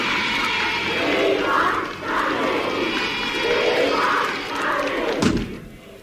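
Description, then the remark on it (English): A large crowd of hundreds of fans gathered outside with banners roars and chants continuously, the noise swelling and dipping in waves, with a single heavy thud near the end before the din fades slightly. “Listen to that. Well, the slaughterhouse is ready.”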